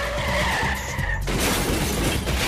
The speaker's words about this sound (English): But look, he just got run over by a car now.